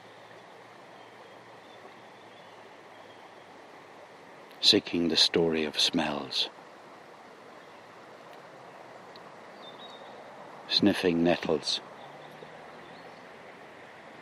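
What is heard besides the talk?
water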